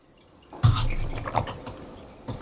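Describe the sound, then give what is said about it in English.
A brief sip of tea from a cup, with a soft liquid slurp and a faint clink, followed by quiet room tone and no talking. “I should be drinking water instead of this tea.”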